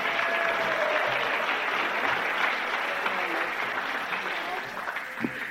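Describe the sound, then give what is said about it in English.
A crowd at an evening religious gathering claps steadily for several seconds for a woman being introduced, a dense, even wash of applause at a consistent loudness that thins slightly toward the end. “Give her a clap.”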